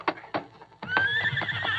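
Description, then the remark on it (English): A couple of sharp hoof clops from a spavined horse slow to a halt before a lawman's office, then the horse lets out a loud, drawn-out whinny, with faint shuffling beneath it. “Sheriff Tom Harris saw Ellis Carter slumped over the neck of his horse as the spavined animal came to a stop before the lawman's office.”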